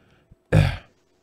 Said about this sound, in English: I chucked it in the back with the Post-it note, and that's why I think I was horking and coughing. Because I just got, like, a straight shot to the back of the throat.